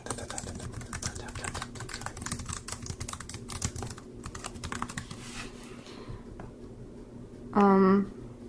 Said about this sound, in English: Okay, let's see. Sorry for the keyboard clacking.